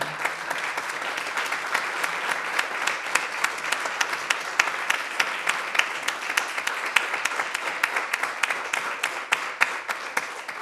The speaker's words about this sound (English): So may we give him first a round of applause.